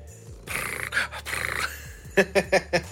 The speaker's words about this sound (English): Happy cat. Right, on you go. No. You are such a loud cat. Go. Go, I'll feed you in a minute.